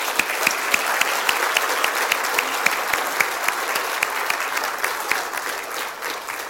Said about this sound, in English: And I also appreciate the Christmas play and everybody that worked in it and everybody that participated in it. I think we'll just give some applause to everything.